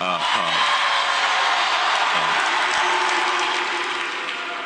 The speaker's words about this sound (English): Now, he didn't want to say that, but the reaction that he got from the crowd and the pop that he got from the crowd made him go off and say, I mean, I'm personally a fan.